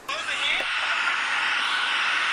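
A constant, fairly loud hiss of white noise from the many disks and servers of a data center, with the air conditioning running, and a brief warbling tone flickering at the very start.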